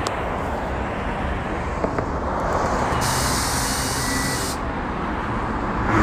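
Steady roar of road traffic, cars speeding past with a sharp hissing burst partway through, like air brakes or tyre spray. No one speaks.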